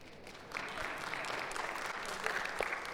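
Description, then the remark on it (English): Audience applause swells in after a brief lull, a steady wash of many hands clapping at moderate loudness with a few sharper claps standing out, no voices over it. “You could clap for that one.”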